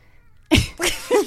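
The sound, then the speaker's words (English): A cat named CK gives a short meow: a sharp breathy onset followed by a rising and falling wavering cry, heard alone after a moment of near silence. “That was the meow that you just heard.”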